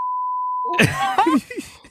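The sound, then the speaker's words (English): A single steady, high electronic beep holds for most of a second, then cuts to a burst of loud, gliding vocal sounds, like groans or exclamations. “Some beeps over.”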